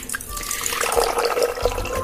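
Tap water splashes and trickles steadily into a glass for about two seconds, a continuous pouring sound with a faint rising ring as it fills. No one speaks.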